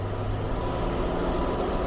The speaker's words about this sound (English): Machines hum and whir just as they would at any other power plant in the country.